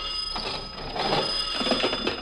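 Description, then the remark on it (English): An old-fashioned telephone bell rings with a continuous metallic clatter, fairly loud, lasting the whole moment with no one speaking. “I'm expecting a call. I'll answer. Go on, then. I answer before they hang up.”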